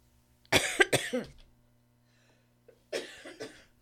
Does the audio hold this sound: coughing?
yes